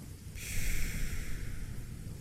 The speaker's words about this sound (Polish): No, skupiasz się na tym bramie, patrzysz tamtą stronę, ale słyszysz to chrapanie za sobą.